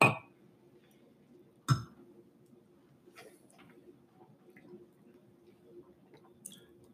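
Glasses of Pliny the Elder beer knock together in two sharp clinks in a toast, followed by quiet sipping and swallowing of the beer over a low hum, with a few small wet mouth sounds and a faint tap near the end.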